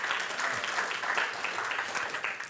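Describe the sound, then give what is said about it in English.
Steady audience applause, a dense crackle of many hands clapping at an even level throughout, with no voices standing out above it. “Yeah, go on, give her a clap.”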